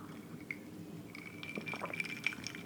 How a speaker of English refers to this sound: And I'm also going to take a little sip of my drink. So don't mind the noises that might happen.